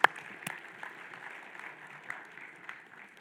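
Audience applause: a steady wash of many hands clapping, with a sharp initial clap and scattered louder claps standing out through the sustained, moderately loud noise.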